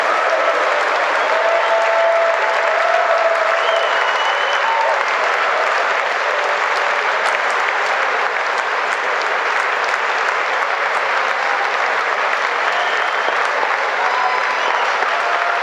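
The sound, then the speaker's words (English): Sustained applause from a large crowd after Donald Trump finishes his State of the Union speech, with Nancy Pelosi standing and clapping, a dense steady roar of clapping holding at an even, loud level for the full fifteen seconds, with faint cheering voices mixed in. “Nancy Pelosi, after Trump wraps up his State of the Union speech, stands up, claps, and basically rips up copies of his of Trump's speech.”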